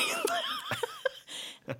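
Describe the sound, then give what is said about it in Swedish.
A few short coughs break up bursts of light, breathy laughter, with sharp individual hacks spaced unevenly over a couple of seconds. “Jag ska bara hosta lite.”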